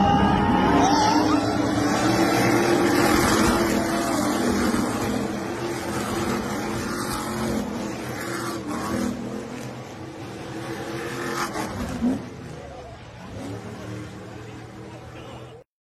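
Racing super truck engines roar loudly and continuously at the Big Machine Music City Grand Prix, rising and falling with revving, dense throughout, with indistinct voices mixed into the din.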